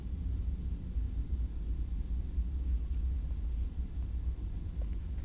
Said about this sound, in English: What do we got there? Rockets? Jets? Leviathan? Behemoth? Big plane.